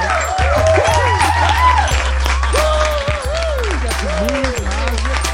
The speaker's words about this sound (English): Virtual audience, did you notice that sound in the digital audience where somebody in the crowd goes, woo! Yeah, yeah. Watch this, I'll play it again.